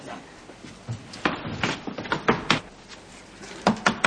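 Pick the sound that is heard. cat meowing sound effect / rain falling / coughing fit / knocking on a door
knocking on a door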